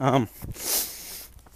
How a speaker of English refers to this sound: You can probably hear, I just turned. I'm now running with the wind instead of against it. I'm also running up a hill. As you can hear, my breathing get a little tougher.